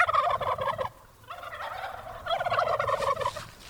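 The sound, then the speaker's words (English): Several heritage turkeys gobble in rapid, rattling bursts on a family farm in Massachusetts, two loud choruses separated by a brief lull, with more gobbles overlapping in the background, outdoors among small fields bordered by stone walls. “Behind her mustard-colored farmhouse, small fields bordered by stone walls are dotted with sheep and turkeys.”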